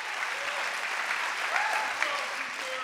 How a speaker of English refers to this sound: Can you clap your hands for that?